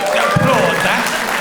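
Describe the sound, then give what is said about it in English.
An audience applauds in a steady, dense wash of clapping that holds at an even loudness throughout, with a faint voice briefly audible underneath. “Applaud that.”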